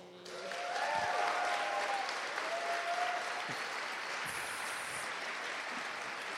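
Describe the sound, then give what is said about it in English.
Sustained applause from a sizeable audience, clapping for someone who has run the OHP for many years, a dense wash of clapping that swells quickly and holds steady for several seconds, with a few faint whistles or cheers threaded through it. “And yes, give him a clap too.”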